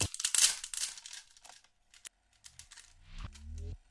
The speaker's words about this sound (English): this one plastic peel is about to cost me about $3,000 in value